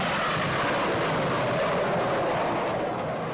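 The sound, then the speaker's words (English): A loud, steady roar of planes at Chicago's two-day Air and Water Show passing overhead at North Avenue Beach along the lake in August, a broad rushing jet noise that barely changes over a few seconds, with no voices. “Yep, Chicago's two-day air and water show along the lake.”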